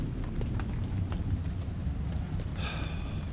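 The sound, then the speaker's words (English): Steady rain pours down with a deep, continuous rumble of thunder beneath it, scattered drops tapping through the downpour, and a brief high tone near the end. “Ugh, I hate lightning.”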